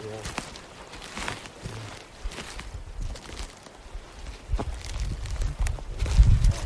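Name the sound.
horses walking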